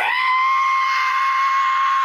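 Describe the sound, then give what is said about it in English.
A voice imitates the screech and whistle of a plane flying too low, holding a loud, steady, high-pitched tone for about two seconds with no words. “I was in the bathroom taking a shave, and I heard a screech and a whistle.”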